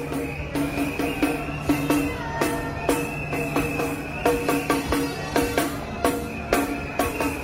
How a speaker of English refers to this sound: And again, you can hear the whistles blowing, you can hear the drums beating as the people march on. It's encouraging to see these guys.